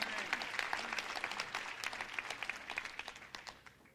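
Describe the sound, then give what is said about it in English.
An audience breaks into steady applause for the King, dense overlapping claps forming a bright, crackling wash that gradually thins and softens toward the end, with a few isolated claps standing out. “Come on, let's just applaud the King.”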